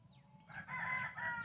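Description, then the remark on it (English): A rooster crows loudly in a barnyard in one drawn-out, harmonic call, with a low rumble of background noise underneath. “And the region, too, I think, of birds and other critters.”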